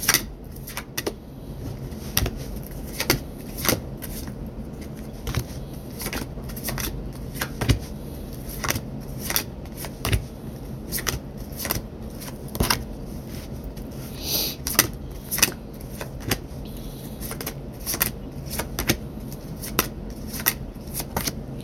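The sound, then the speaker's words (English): A deck of cards is shuffled for about twenty seconds, with repeated crisp riffles and soft slaps at an uneven pace. Otherwise quiet, with no talking. “All right, so for anyone that may be wondering like what all that noise was and what I was doing, I ask my guides when to shuffle, how to shuffle, when to stop.”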